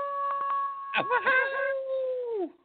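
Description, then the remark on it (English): A person's voice imitates an animal howl, a 'Hyper Sloth Howl' given at the end of a show: a sustained wavering tone with a few brief yips partway through that slides downward and fades at the end; loud. “I'll start howling and you start howling too”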